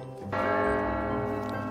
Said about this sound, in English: I keep hearing a bell.